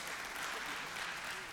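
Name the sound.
audience clapping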